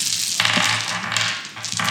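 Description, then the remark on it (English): Plastic dice clatter together continuously for about two seconds, a dense rattle of many small pieces jostling and clicking, with brief swells in loudness and no talking. “I most recently just got like a mass bundle of 20 sets of dice on Amazon.”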